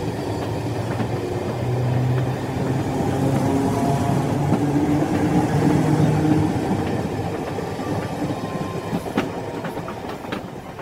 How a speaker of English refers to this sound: Chris and I rode the train for several hours.